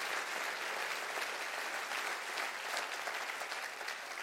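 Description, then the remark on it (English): An audience claps steadily for several seconds, a dense, even wash of many hands with no single beat standing out and no voices rising above it. “Clap your hands and say, God, let me be a generous person.”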